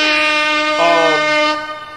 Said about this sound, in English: Hit that with the air horns, please.